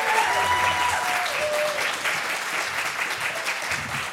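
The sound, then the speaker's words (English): A crowd at an 11 a.m. panel applauds steadily to welcome a Lucasfilm senior creative executive, a dense, even wash of clapping that holds at a loud level for about four seconds, with a faint whistle or cheer rising briefly near the start. “Everybody, give him a big hand.”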